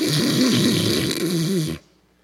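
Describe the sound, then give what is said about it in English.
A voice imitates snoring: one loud, raspy drawn-out snore with a wavering buzz that lasts nearly two seconds, then cuts off abruptly into near silence. “if you're sitting in your seat there and you're snoring away, and God says,”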